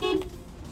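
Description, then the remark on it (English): A single short car horn beep, a bright steady tone lasting a fraction of a second, fairly loud, followed by a low rumble of engine or road noise, heard with the car window shut. “Look, I'm going to beep my horn.”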